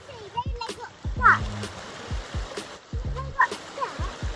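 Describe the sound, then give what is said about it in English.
Several short splashes of sticks being thrown into a steadily rushing stream, fairly sharp against the constant water noise, while a child's voice calls out briefly in between. “So how about we throw some, shall we throw some sticks into the river and think about that?”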